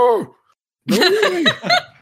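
A close, voiced gasp with a falling pitch, followed after a brief pause by a longer, wavering vocal exclamation of surprise. No words are spoken.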